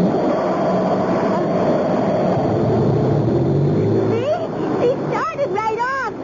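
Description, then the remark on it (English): A boat motor, started by turning a key, runs loud with a steady, droning rumble, then near the end it gives rising and falling whines as it revs. “Now, I'll turn the key.”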